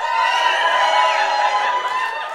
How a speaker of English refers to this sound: Why don't you all give God a cheer, all 120 of you, come on.